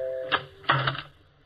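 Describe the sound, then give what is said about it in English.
A doorbell chimes a Chopin melody, a short run of descending tones, each note held steady, with two sharp mechanical clacks cutting across the tune before it fades out. “Ooh, listen to that doorbell. Chopin, at least.”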